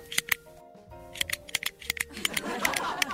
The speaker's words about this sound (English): Number 6, people who click pens.